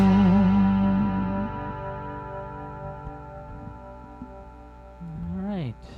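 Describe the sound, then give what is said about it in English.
A sustained electric guitar chord rings out and slowly decays, drenched in heavy reverb and effects, with a wavering pitch-bent note near the end; no one speaks. “So I noticed a really heavy reverb on the sound of that guitar.”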